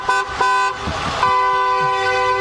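Several car horns from a socially distanced drive-by caravan of 100 cars in San Francisco, celebrating a man's 100th birthday, honk at once in long, overlapping, loud blasts, with a brief break of passing engine and road noise before the steady honking resumes.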